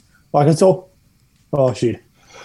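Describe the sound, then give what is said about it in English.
Two loud sneezes about a second apart, each a voiced burst ending in a sharp hiss, with quiet background noise between them. “There we go. We can feel that one come for the last 10 minutes.”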